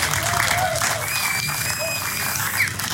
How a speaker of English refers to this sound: Guys and girls, can you give yourselves a big round of applause? Because you do deserve it.